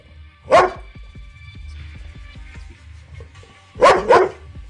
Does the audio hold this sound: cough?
no